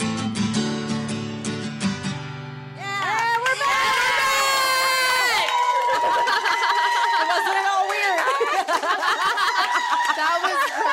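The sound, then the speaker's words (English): A short burst of music gives way to a loud live crowd cheering, whooping and shouting, with many overlapping voices sustained steadily until the end, as a live show at the Flamingo in Las Vegas goes to a commercial break. “Yeah, let's clap out.”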